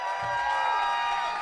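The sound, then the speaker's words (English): A Kill Tony audience cheers and applauds in a steady, dense roar of voices and clapping that holds at an even loudness for just over a second, a round of applause voting for Ashton Cermak as winner of a Mexican drum-off. “Who has Ashton Cermak winning that Mexican drum off by a round of applause out there?”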